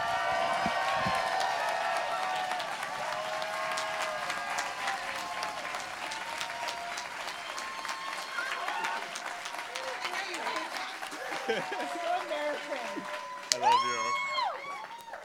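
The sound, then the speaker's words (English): A crowd claps loudly and steadily for about fifteen seconds, with scattered high whoops and cheers rising over the dense patter of hands before it starts to thin out. “Get up out of your chairs. Give it up”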